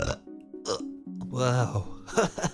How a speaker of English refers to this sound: And then you randomly burp, and these purple bubbles come out of your mouth.